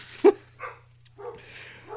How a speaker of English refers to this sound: Now the dog's barking.